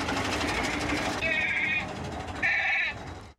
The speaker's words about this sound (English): Goat's back.